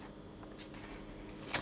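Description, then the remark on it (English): A quiet paper rustle, then one short, crisp swish near the end as a page of a book edition is turned to find the right page, against a steady low background hum. “He says further, Shekol, turning the page in this edition, so let's find the page over here.”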